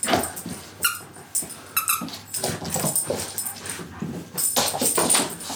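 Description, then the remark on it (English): A dog named Winnie squeaks a little donut chew toy, a run of shrill, irregular squeaks in quick bursts over a few seconds, with some snuffling and rustling between them. “That is Winnie going absolutely mad in the background. Driving us up the wall today. Squeaking a little donut.”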